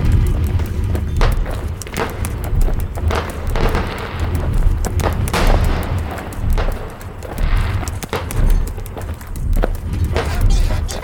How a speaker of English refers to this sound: Those fireworks? I don't catch them every year with all my traveling. Pop out of every chimney in the kingdom on the queen's birthday